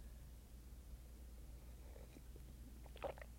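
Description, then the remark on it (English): A quiet sip of coffee: faint wet mouth sounds, then a short slurp near the end over a low steady hum, with no one talking. “I do have coffee, so I'm going to sip in between.”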